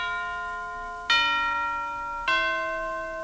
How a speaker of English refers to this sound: I think that bell must be Big Ben, right?